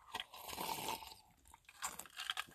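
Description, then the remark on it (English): A slurping sip of iced cold brew coffee with Mexican vanilla, with crunchy, rattling bursts like ice shifting in a cup, over a couple of seconds with no talking. “But first, I'm going to get me a nice sip of coffee.”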